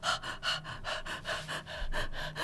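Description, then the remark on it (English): A person mimics the excessive panting of an overheated dog, a steady run of about seven quick, breathy huffs, fairly loud, with no speech. “Indications that your dog might be getting overheated include excessive panting.”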